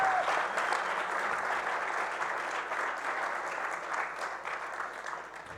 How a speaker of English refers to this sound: Give her one more hand of applause.